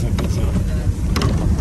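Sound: bus engine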